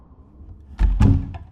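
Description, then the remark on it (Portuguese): A house door opens with two heavy wooden thunks and a lighter knock after, preceded by a soft low rumble of wind rushing into the house. No one speaks. “A porta se abre e o vento invade a casa.”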